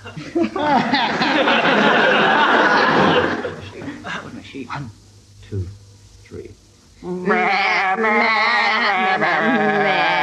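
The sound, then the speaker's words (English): A team of two people sings a song in a musical game round in wavering, bleating sheep-like voices, loud, with chuckling from an audience; the singing breaks off briefly midway, then resumes just as loudly. “I want you to give them an animal to sing it in. Which is sheep.”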